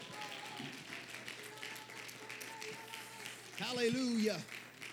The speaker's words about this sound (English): Clap your hands like you believe it this morning.